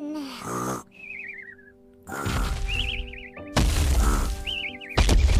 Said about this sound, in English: Mr. Mouse, is that you? I'd recognize that snore anywhere.